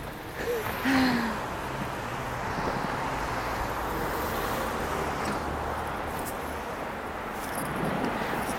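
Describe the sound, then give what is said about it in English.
Steady roar of city traffic on Bedford, with cars rumbling by on streets not yet blocked off, blended with gusty wind noise. No distinct single pass-by stands out, just a continuous wash of road sound. “apparently the streets are not blocked off yet, because as you can hear, we've got some cars that we're hanging out with.”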